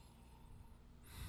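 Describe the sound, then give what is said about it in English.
A near-silent moment gives way to one sharp nasal sniff near the end as someone inhales the aroma of whiskey, made with hand-selected staves, from a glass during a tasting. No one speaks. “Why don't we dive right in and give it a sniff”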